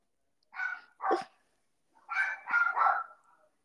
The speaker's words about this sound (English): Y'all know me. My podcast is real and raw, and my dogs, they're barking.